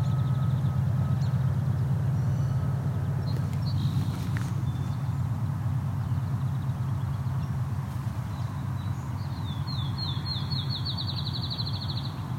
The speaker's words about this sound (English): Appears to be some fledgling song sparrows in an argument.